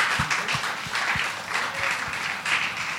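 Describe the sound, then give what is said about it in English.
A crowd applauds a panel speaker whose time is up, steadily for about three seconds, a dense wash of many hands clapping with a few sharper, louder claps standing out irregularly. No voices come through. “We'd like to give you a big round of applause.”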